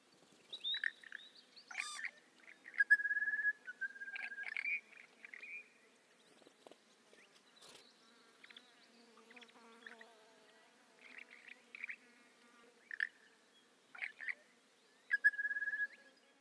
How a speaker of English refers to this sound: The second call belongs to the largest spiny-cheeked honey eater. Both of these birds are common inhabitants of the dune vegetation, eating berries and feeding on nectar of the plants around you.